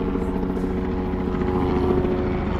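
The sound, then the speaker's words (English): A helicopter drones steadily overhead, its rotor thrum and engine hum filling the scene at a constant, fairly loud level with no voices. “Is that why the helicopter is going away, you think?”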